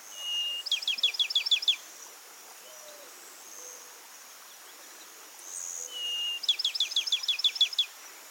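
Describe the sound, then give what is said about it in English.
A Pinewoods Sparrow, a secretive bird with streaky brown, gray, and rust-colored plumage, sings twice, each song a clear, sustained whistle followed by a quick series of sweet, descending notes. The songs are spaced several seconds apart against a quiet, hissy outdoor background. “It's a secretive bird with a lovely little song and streaky brown, gray, and rust-colored plumage.”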